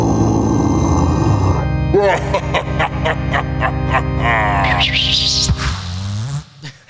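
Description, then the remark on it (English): A loud, fart-like sound effect: a low buzzy rumble, then a run of rapid sputtering pops, ending in a rising squeaky whine and a final wobbly blurt. “It sounds like a fart.”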